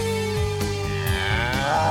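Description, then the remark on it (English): A cow moos in a long, drawn-out bellow that stays loud for the full two seconds, its low tone wavering and rising slightly toward the end, with no talking. “I got my back against the milking cow.”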